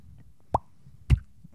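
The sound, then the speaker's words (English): A voice imitates dripping water with three wet mouth plops spaced about half a second apart; the first has a short ringing, pitched tone, and the later ones are duller and louder. “It's like little bubbles. Little bubbles from heaven.”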